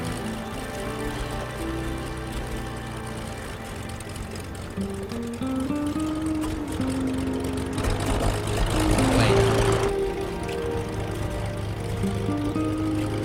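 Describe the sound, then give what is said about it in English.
A steady, droning aircraft engine with layered tonal hum, swelling into a louder rush of roaring noise midway before settling back into the drone, as a plane crashes in a scene from the film Fool's Gold. “It's Kate Hudson and McConaughey making out as the plane is crashing.”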